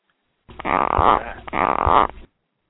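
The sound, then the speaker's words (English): Two loud, raspy gecko croaks follow one another, each lasting close to a second, with a buzzy, rattling texture and no voices around them. “Sorry, those are some gecko noises.”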